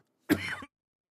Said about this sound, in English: Apologies for that. I just had to have a little a little cough there.